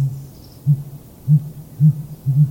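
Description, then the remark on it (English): Male sooty grouse hooting in spring from a concealed perch high in a tall conifer: a series of very low-pitched, hollow thunks, about five or six, spaced unevenly over a soft steady hum, with the last two coming close together. “Known as hooting, it's a very low-pitched, 5- or 6-note thunking sound.”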